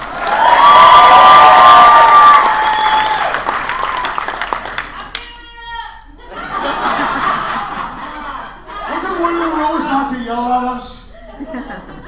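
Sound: audience applause and cheering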